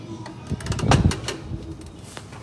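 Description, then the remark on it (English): A sticking door scrapes and rattles with a cluster of dull knocks and clicks as it is forced open to go outside on a chilly morning before sunrise, the bumping peaking briefly in the middle before trailing off into quiet rustling. “Oh, stuck in the door.”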